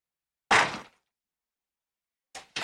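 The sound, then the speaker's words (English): A heavy door in a scene from the film The Breakfast Club slams shut with a loud thud that fades quickly, followed after a short silence by two more quick, solid bangs. “The door's way too heavy, sir.”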